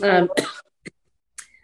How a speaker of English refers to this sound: Sorry, I was sick last week, so I cough a little bit when I'm talking. Oh. I apologize.